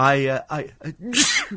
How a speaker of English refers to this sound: I'm going to sneeze.